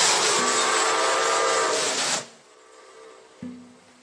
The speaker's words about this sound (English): Oh, no. Father's playing with his trains.